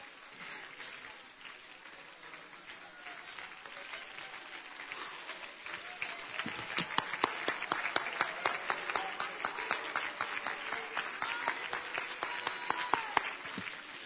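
A crowd of people clapping in praise of the Lord on a Sunday morning, starting as a soft patter and swelling into loud, dense clapping with sharp individual claps standing out after a few seconds, with some faint voices mixed in.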